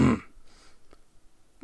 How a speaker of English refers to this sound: Had to burp there for a minute.